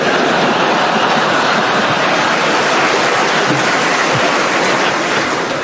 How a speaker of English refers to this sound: Oh, there's my train.